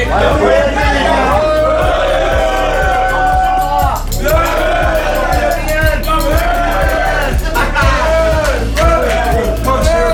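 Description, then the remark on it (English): A loud, continuous hubbub of a crowd chatting while eating in a cantina, many voices overlapping without pause, with a steady thumping rhythm running underneath the whole time. “Everybody's eating. It's a happy crowd.”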